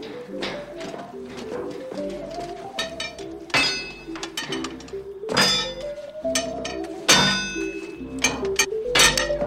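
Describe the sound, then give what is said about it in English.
A hammer clangs against metal again and again at an uneven pace as someone forges in a foundry, each loud strike leaving a bright ringing tone. “Just get the hammer.”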